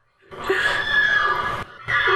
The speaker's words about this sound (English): But I do have a skill you might like. It's called horse sound. Try it? Yes. Here's the skill Horse Sound by 123,456. Welcome to Horse Sound.